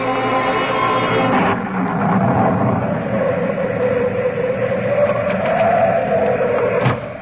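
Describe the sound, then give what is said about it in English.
A loud, steady thunderstorm roar with a howling, whistling wind that rises and falls, broken by a couple of sharp cracking bursts. No voices. “That's just the storm.”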